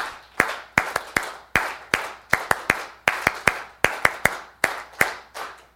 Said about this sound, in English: Oh, there was a couple people that gave that extra clap at the end.